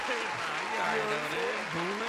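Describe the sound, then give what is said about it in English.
A crowd boos together in a loud, sustained wash of low, droning voices that swell and dip, with some clapping or general crowd noise underneath. “You over here booing?”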